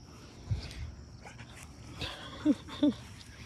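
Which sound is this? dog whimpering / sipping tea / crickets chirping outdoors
dog whimpering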